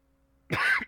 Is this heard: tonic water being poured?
no